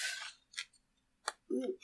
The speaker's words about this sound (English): Hold on. I've got this all on paper as I'm flipping through pages.